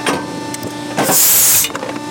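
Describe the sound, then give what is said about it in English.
One of the maker's standard coin presses starts up with a steady mechanical hum and light clanks as a blank is fed in. A foot pedal is pushed and it stamps a coin with a thump and a loud half-second blast of hissing air, then settles back to clicking. “walks us through the process on one of their standard coin presses”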